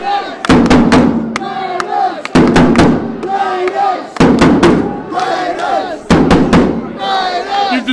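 A drum is struck in a repeating pattern of sharp, loud hits, each cluster of beats returning about every two seconds, while a crowd shouts and chants continuously underneath.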